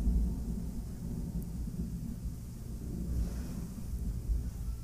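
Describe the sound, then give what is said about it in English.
Low, continuous rumbling of thunder from a storm rolls through the whole stretch, deep and steady with slight swells, with no voices present. “Is it a storm?”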